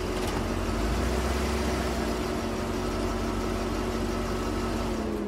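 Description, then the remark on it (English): A steady, low engine hum drones throughout from a taxi's motor running during a ride while following another car, with a constant rumble and faint tonal whine and no voices. “Taxi! Cheers. Can you please follow that car up ahead?”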